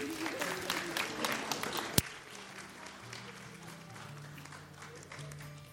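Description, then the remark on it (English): A church audience applauds a family with dense, steady clapping that peaks with one sharp clap, then thins into softer scattered claps as sustained low musical tones begin underneath. “Let's give this family a round of applause.”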